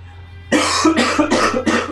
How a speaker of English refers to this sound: God damn, I'm going to cough immediately.